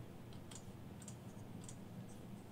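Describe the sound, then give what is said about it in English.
Several soft, sharp clicks of buttons being pressed on keyboards and a switcher, spaced irregularly about half a second apart, over a steady low hum with no one talking. “So that's why I don't move my keyboards and switcher around, because I end up pushing buttons.”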